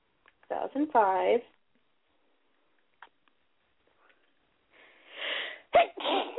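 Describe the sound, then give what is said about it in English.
A loud sneeze: a breathy intake builds up and bursts into a sharp explosive 'achoo'. Earlier, a brief voiced sound is heard, followed by a couple of seconds of near silence. “2005. Bless you.”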